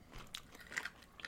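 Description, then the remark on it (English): A bite into a pickle, with a few short, crisp crackling bursts as it breaks apart. It is fairly quiet, with no talking. “It's got a crunch.”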